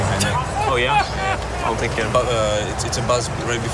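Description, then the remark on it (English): A voice imitates a buzzing bee right before a tennis serve, with a few wavering, droning hums that rise and fall in pitch over a steady low rumble of background noise. “There's a person imitating a bee.”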